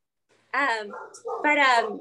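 A dog whines and yips in two drawn-out, high-pitched bursts, fairly loud, with a brief pause between them.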